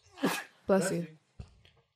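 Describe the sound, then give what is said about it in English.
A sneeze: a short sharp intake of breath, then a loud, voiced, explosive burst lasting about half a second, followed by a brief faint sniff or shuffle. “Bless you.”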